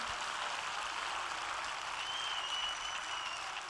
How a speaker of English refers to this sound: Clap your hands and give praise to the Lord.